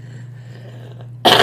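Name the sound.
cough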